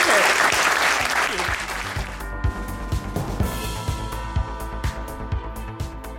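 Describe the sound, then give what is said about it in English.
A burst of loud applause from a live audience in London thanking Suella Braverman in 2019, a dense wash of clapping that thins out after a couple of seconds as music with a steady beat and sustained tones takes over. “Ladies and gentlemen, please give a huge thank you to Suella Braverman.”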